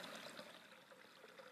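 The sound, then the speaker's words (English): Water pours steadily in a continuous splashing trickle, fairly quiet, with no voices over it. “And that which, as I pour it, has no form, takes the shape of that which would give it form.”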